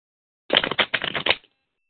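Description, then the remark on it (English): A deck of cards being shuffled, a brief burst of quick riffling clicks lasting about a second, with no voices. “I want you to tell me when to stop shuffling, okay?”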